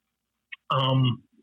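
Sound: throat clearing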